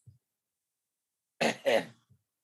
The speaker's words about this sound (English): What are you coughing on, Mrs.? Fuck. Choking on some dick-shaped microphone.